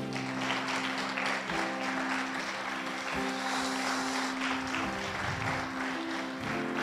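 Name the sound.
audience applauding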